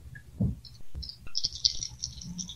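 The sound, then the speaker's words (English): Dice are rolled in a game, rattling and clattering in a brief roll, a quick run of sharp, bright clicks and knocks that settles after a couple of seconds, with no voices. “Well, then you will love to hear that I just aced on two dice.”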